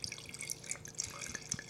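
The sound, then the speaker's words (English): A 2010 red blend wine, Viñas Viejas, pours steadily into a glass, a soft continuous splash with small bubbly glugs and drips, quiet and unaccompanied by any voices. “I'm gonna do a little pour here.”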